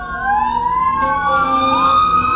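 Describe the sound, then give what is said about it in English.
A fire truck siren wails loudly, its rising and falling tone sweeping continuously over a low rumble of traffic as it passes by. “There's a fire truck back there.”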